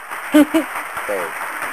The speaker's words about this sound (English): Hey, you know, we run into like old school sitcoms, you know, when the stars and people come in, you know, they get that applause button hit.